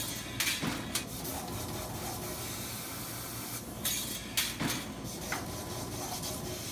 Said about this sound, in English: Okay, now we're actually punching out sections. These are the doors for the robot. And it's actually cutting the metal off.